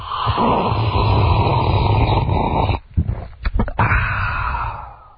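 A caller makes a long, slow slurp down a thin, phone-quality line, a steady noisy sucking that breaks off with a few clicks and pops before starting again and fading.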